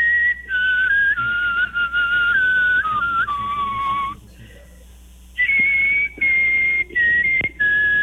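A person whistles a clear, wavering melody, pausing briefly near the middle before resuming with sustained high notes and a few quick breaks, with no talking.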